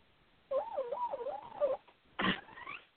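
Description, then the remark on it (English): A pet named Pony Bird squeals in a high, wavering warble for over a second, then lets out a short harsh burst that slides into a rising squeak. No one speaks. “Sorry, he's extra squealy tonight.”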